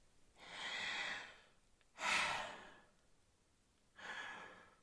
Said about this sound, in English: Most of us are just not doing it right. Show me how you breathe